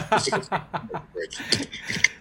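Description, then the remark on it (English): A cat scratches at a door: a quick run of dry, rasping scrapes in an uneven rhythm, with a few brighter, harsher strokes toward the end. “hold on, my cat is scratching the door.”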